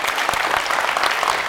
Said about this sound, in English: So I want to ask you to give a last very warm round of applause.